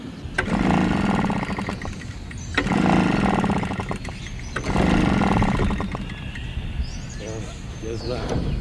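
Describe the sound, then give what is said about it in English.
A malfunctioning gasoline-powered leaf blower engine sputters and surges in rough bursts about every two seconds, revving loudly then dropping back, uneven, as if struggling to stay running. “His gasoline-powered leaf blower is acting up today, so Hudson is forced to sweep the steps of the memorial by hand.”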